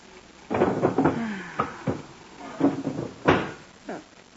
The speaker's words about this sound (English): Put it in the bottom drawer of the bureau. That's empty.